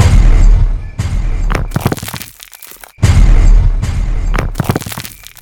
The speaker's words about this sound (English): The blast was spectacular. The force of the explosion vaporized Angela instantly.